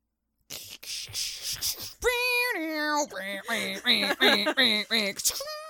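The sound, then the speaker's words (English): A voice imitates an AOL dial-up sound effect: a breathy hiss, then a held, buzzy tone, then a run of rapid warbling chirps, fairly loud and with no talking. “I couldn't pay for the rights to play AOL sound effects, but I could make them with my shitty mouth.”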